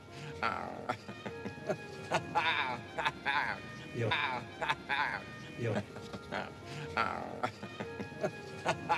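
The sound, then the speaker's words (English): The goat fed to the T-Rex in the film Jurassic Park bleats over and over, a series of loud, wavering cries in quick succession, with no other sounds around them. “It's the goat fed to the T-Rex.”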